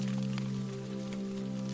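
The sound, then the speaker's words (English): Gentle rain from a night drizzle patters steadily on a roof, a soft continuous hiss with faint scattered drops, heard over a constant low hum. “With a soft, comforting patter of raindrops falling on the roof, she drifts into a soothing, deep sleep.”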